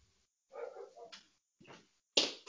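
A dog barks and yelps in a short irregular run, fairly faint at first, then a louder, sharper bark at the end. No one speaks.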